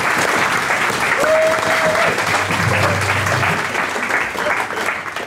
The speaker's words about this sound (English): Can I get a massive round of applause